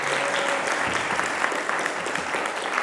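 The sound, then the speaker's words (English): An audience claps steadily for about three seconds to encourage a woman invited up to tell her story, a dense, even patter of many hands at constant loudness with no voices over it. “Give her a bit of a clap, maybe, just to give her encouragement.”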